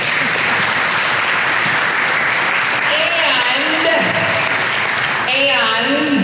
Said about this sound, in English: More traditionalists, you're smiling because I want to hear louder claps on this one, because today you get to do your good deed. Come and say thank you to the musicians who did this more contemporary kind of praise music this morning.